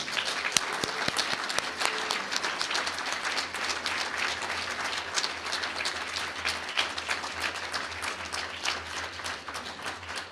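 A steady round of applause from a crowd, many hands clapping densely and continuously for about ten seconds at an even, moderate loudness, with no one speaking.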